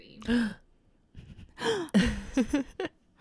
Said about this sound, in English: Gasp.